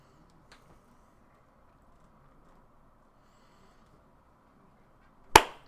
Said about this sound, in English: Record, and then how about we clap on 45?